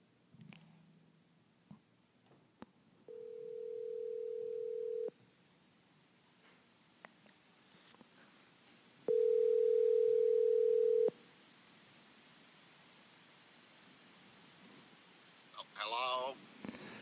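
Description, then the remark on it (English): A morning phone call rings twice through an earpiece, each steady electronic tone lasting about two seconds with a long pause between, followed by faint clicks and a brief sound at the end. “We'll talk about that after I get off the phone, but see if he will pick up this morning.”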